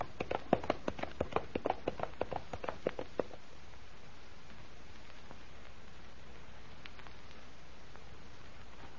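A horse gallops off into the flames of a burning castle, its quick rhythmic hoofbeats growing fainter over about three seconds before fading into a quiet background hiss.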